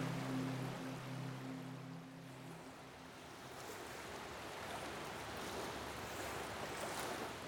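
A steady wash of water and surf with a low engine-like hum at the start that fades out, a boat cutting through waves, with some wind noise.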